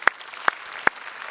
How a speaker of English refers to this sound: So we just want to say, we're going to say thank you to God to bringing you here. So if you're watching online, we want to clap and give praise to God for you.